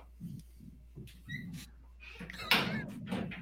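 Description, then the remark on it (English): A door is closed, thumping and rattling partway through with a single sharp knock-like impact and a brief scrape, over quiet background murmuring and faint chirps. “I got my door open.”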